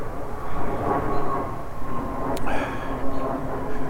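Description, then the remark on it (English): A steady, broad roar of an airplane passing overhead fills the whole stretch, loud and continuous with a low rumbling drone and no one speaking. “Let this plane go by.”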